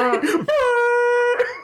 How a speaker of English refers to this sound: Air horns. Is that like a sports thing?